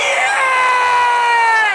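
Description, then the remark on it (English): A loud, sustained, high-pitched scream of excitement celebrating a Liverpool goal that makes it 3-2 in extra time holds steady for almost two seconds, with no words in it. “For those who didn't hear the screams in any of the other rooms, that was Luis Diaz making it 3-2 for Liverpool”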